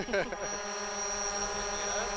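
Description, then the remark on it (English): A drone bought on Amazon buzzes steadily as it flies straight up, a constant high-pitched whine layered with droning harmonics, with a faint voice at the very start. “I just got on Amazon and plopped down my credit card and bought the drone.”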